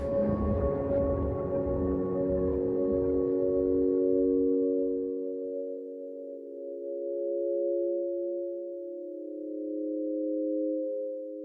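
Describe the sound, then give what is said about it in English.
A dense, rumbling, busy texture fades out after about five seconds, leaving a few calm electronic tones held steadily together, gently swelling and receding until the end. “There's like a dramatic shift from more tense stuff to suddenly you're just like, have a couple tones and really serene.”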